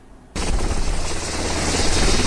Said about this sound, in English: The helicopter convoy bringing the most seriously injured from the earthquake zone to Port-au-Prince, Haiti, running from sunup to sundown.